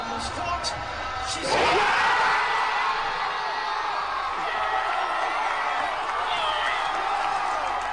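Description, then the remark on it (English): A large crowd of nearly 1,600 people at a big-screen watch party in Garema Place, Canberra, on a Saturday night bursts into loud, sustained cheering and whooping the moment Australia wins over France, with a sudden swell of roaring voices around two seconds in that stays strong and dense throughout. “Here's what the Canberra watch party sounded like the moment Australia won.”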